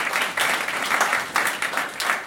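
A crowd claps in a steady, dense round of applause, many hands overlapping into a bright, continuous patter with slight swells, heard on its own without talking.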